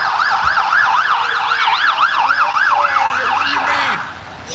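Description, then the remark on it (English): A loud ambulance siren wails in a rapid, steady up-and-down pattern, continuous for several seconds before easing slightly at the end, with faint traffic rumble underneath. “Has been laid out and taken away in an ambulance”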